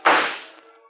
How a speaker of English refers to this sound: But it's Parker shooting the gun out of his hands. Good old Parker.